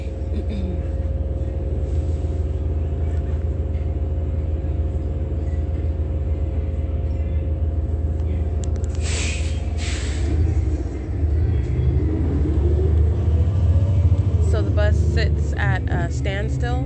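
A steady low engine rumble fills the inside of a moving bus, droning continuously with brief brighter hisses midway and shifting tones near the end.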